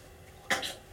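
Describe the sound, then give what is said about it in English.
A single sharp sneeze bursts out, a sudden bright, hissy blast followed by a briefer trailing puff, against an otherwise quiet background with no talking. “God bless you.”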